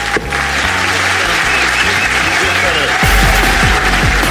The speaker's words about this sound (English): Will you please give a massive round of applause to Shappy Kosandy, ladies and gentlemen? Thank you. Wonderful Shappy Kosandy.